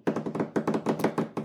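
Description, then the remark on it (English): A quick run of hand drumming taps, about nine dull, thumpy hits in slightly uneven rhythm, fairly loud with no talking. “I must get better at this drumming.”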